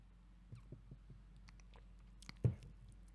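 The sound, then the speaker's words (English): A quiet sip of Dickel 12 whiskey from a cup: a few soft wet mouth clicks, then one fuller slurp and swallow near the end, over a low steady hum with no talking. “As they sip out of their cup, drinking their Dickel 12.”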